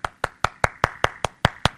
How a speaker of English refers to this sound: Y'all never applaud for me, but they would even applaud for me.